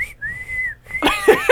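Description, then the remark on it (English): A person whistles a shrill, steady note imitating a referee's whistle: a quick blip, then one long held blast, followed by a burst of loud voices. “No, we, sir, blow the whistle on you. Cue the whistle.”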